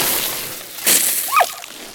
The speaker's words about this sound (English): Oh, look at the hose go. It's spinning and spinning like a sea serpent. It looks pretty mad too.